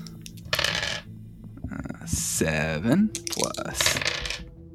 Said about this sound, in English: Guiding Bolt does 4d6, so... Oh my gosh! So you did a fireball, is what you mean. Basically, yeah. So I'll get a billion dice rolled.